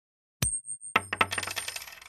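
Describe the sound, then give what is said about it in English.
Two coins flipped and landing: a sharp metallic clink with a lingering ring, then a flurry of quick rattling bounces that settle out; one coin lands tails. No one speaks. “I have two chaos coins and I'm going to flip heads on both of them.”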